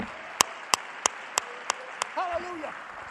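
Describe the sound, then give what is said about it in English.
A church audience claps hands unto the Lord in a steady rhythm, six sharp claps about a third of a second apart that grow slightly softer, followed by a brief voice. “Clap your hands because God is your Savior.”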